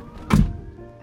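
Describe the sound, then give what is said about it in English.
A single heavy car door slams shut, a solid low thunk with a brief rattle, then a quiet hum of the surroundings as it fades. “I'll get out of the car. I actually need to know. It's very important. Slam the door.”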